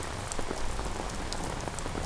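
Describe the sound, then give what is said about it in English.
Steady rain falls on a hard surface, a dense continuous patter with scattered sharper drips, even in loudness throughout, with no voices. “It's like the weather. It's like this damn rain.”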